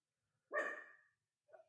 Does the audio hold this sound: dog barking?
yes